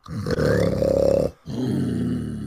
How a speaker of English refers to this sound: You knock on her bedroom door. It opens slightly, and from within you can hear the sound of a mighty dragon sleeping.